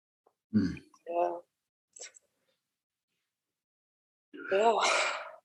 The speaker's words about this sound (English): Yeah, breath. I invite for a breath. I'm breathing.